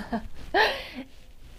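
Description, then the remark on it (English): A single harsh cough right into the microphone, loud and breathy, lasting about half a second, with a short throat sound before it and faint background noise. “Oh, I coughed right into that.”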